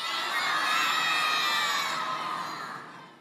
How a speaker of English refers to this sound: We're going to invite you to scream out your favorite Christmas song when I count to three. So get it in your head. Kids, you're allowed to yell in church this one time, all right? Here we go. Favorite Christmas song. One, two, three.